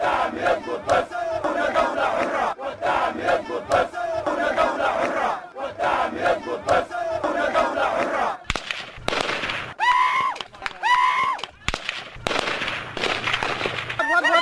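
impact, gunfire

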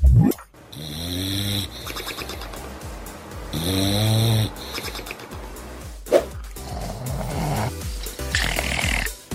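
animal, dog snoring

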